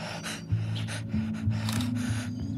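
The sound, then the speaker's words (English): A parrot makes low, rasping, ragged breaths in quick irregular bursts, hoarse and breathy, with a faint low hum underneath and no talking. “The next morning, however, the low, rasping noises were back. She again came over to me and fluffed and bobbed, all while making the same ragged breathing sounds.”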